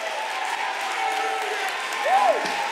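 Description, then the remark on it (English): A crowd claps steadily in a dense wash of applause, with voices calling out beneath it and one rising-and-falling shout standing out near the end. “He says, sing, make a joyful noise, clap your hands, shout unto God.”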